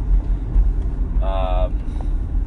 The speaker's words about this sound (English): Can this car go any slower? Come on, bro. Come on. I don't like the rims in this Corvette.